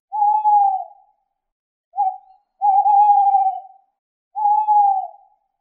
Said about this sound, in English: Perfect, you've got it. It's an owl. Can you be an owl again with your wings and say twit-twoo, twit-twoo?